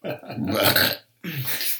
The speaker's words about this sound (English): You know, I burped. Yeah, I was like, oh, I'm about to puke. About to puke.